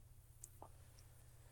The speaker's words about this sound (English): Oh, your microphone is hitting your zipper,